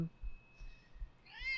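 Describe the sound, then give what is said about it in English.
A single male cat meows near the end, a short rising-falling call, preceded by low rumbling noise and a faint steady high tone. “Look at this cat. First of all, look how cute he is.”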